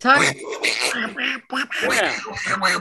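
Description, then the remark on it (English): A person does a squawky, garbled Donald Duck-like voice, like the main killer in a Lucio Fulci giallo film, chattering nonstop for about three seconds in a nasal rasp with brief breaks between bursts. “But the main weirdness of this is the main killer talks like Donald Duck. Well, quacks like Donald Duck.”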